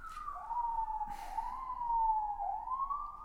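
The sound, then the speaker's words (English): An ambulance siren wails steadily in the background, its pitch slowly sliding down and back up, heard from outside at moderate volume, with a couple of brief noisy bursts and no talking. “We know you're there, Mr. Ambulance. You could go away. I feel like these sirens are progressively getting more annoying.”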